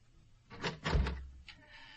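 A door is opened, with a rattling latch, a short creak and a low thud, followed by a faint brief click.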